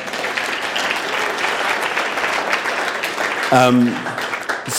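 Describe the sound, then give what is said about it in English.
A crowd claps steadily in a dense, continuous wash of applause, with a brief tonal musical sound rising in near the end. “And give a clap.”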